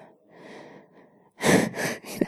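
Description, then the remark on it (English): A big, drawn-out yawn: a low, moaning inhale swells into three loud, breathy huffs over about two seconds, with no talking. “You have to yawn so huge, you feel like your jaw is gonna unhinge.”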